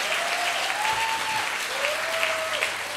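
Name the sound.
audience applause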